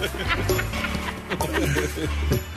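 A chicken clucks repeatedly in quick, choppy, loud bursts, with a low steady hum running underneath.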